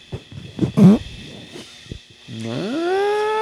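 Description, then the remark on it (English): A fart blown right onto a microphone: a few sputtering, rumbly bursts, then a long buzzy tone that slides upward in pitch and holds, fairly loud. “I think that actually made contact with the anus.”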